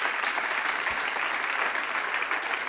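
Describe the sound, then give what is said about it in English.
An audience gives God a clap, clapping steadily in a dense wash of many hands with no pauses, holding an even, fairly loud level for the whole stretch with no voices standing out. “You know, some of these things that we, come on, give God a clap.”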